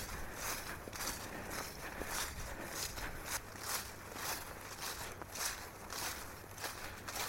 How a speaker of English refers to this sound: There's a wonderful old oak that we're just coming up to, and the leaves are now on the ground, they're all sodden, so they don't crisp and as you walk through them. But Penny loves to nuzzle her way through, sniffing through.